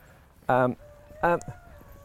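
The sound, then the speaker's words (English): Dogs barking: two loud, sharp barks about three-quarters of a second apart, with a faint steady hum in the background and no talking. “What's that noise? Oh, that's another... God, there's so that's many the dogs Hound of the Baskervilles”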